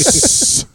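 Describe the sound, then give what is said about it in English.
A voice holds out an S sound like escaping steam, a loud, steady, high hiss held for about half a second, faint voiced murmurs beneath it, then stops abruptly into quiet. “Sounds like steam escaping.”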